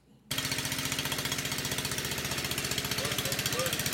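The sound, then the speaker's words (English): An old engine starts up abruptly and runs loud, with a fast, steady chugging rhythm and a heavy mechanical rattle that continues without letting up. “Now, you're not going to be able to hear me talk very well because the engine's running, so I'll talk and it'll just run.”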